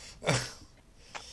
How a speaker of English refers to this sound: Bless you.